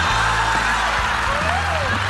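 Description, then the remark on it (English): An audience applauds and cheers for Kara Swisher: a loud, steady wash of crowd noise with whoops and cheers rising above it, sustained without a break for about two seconds. “Guys, please, a round of applause.”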